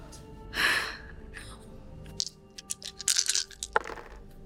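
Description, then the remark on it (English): Six dice being rerolled rattle and clatter onto a surface in a quick burst of sharp, irregular clicks, following an earlier soft breathy rush of air. “I'm gonna spend six to reroll six of these.”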